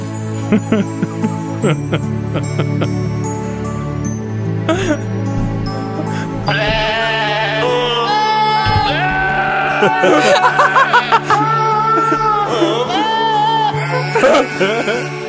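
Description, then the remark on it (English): Goat screams and wavering bleats pitched to follow the slow carol melody of Silent Night, loud over a soft instrumental backing that plays alone for the first few seconds. From an album of Christmas carols sung by screaming goats. “They have released an album entirely consisting of Christmas carols sung by screaming goats.”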